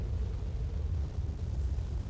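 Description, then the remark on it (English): Snow cascades down the sides of a central mountain as a steady, deep rumbling roar, dense and low-pitched, holding at an even loudness for the whole stretch with no voices or breaks. “And as you move north, you'll hear a bit of motion coming all around you. Snow cascading down the sides of that central mountain.”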